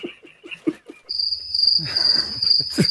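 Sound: crickets chirping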